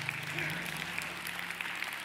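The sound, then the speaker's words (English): An audience at a church service breaks into steady, sustained applause for the people who were baptized the previous Saturday. It is a dense wash of many hands clapping at once that fills the room evenly from start to finish. “And it was an amazing, you can clap for that.”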